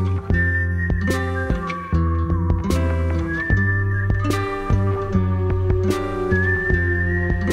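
A person whistles a smooth, sliding melody over a full band, the whistled line clear and upfront above steady drums, bass and guitars, with no voices.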